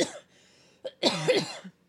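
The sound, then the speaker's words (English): A raspy cough fit: a short hack, then a brief pause before a longer, harsh burst of coughing with rough, throaty texture, heard alone without speech. “The cough is starting.”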